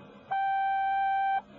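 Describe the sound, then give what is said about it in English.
A single steady electronic answering machine beep sounds for about a second, a clear pure tone with faint higher overtones, starting and stopping abruptly over low background hiss, with no talking. “You will have exactly 10 seconds after you hear the little beep.”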